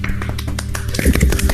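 A brief burst of scattered clapping, a few hands beating quick, sharp, irregular claps at a steady moderate loudness, with a low hum underneath and no voices.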